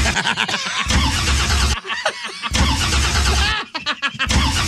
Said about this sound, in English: it just sounds like you're starting a car over and over again.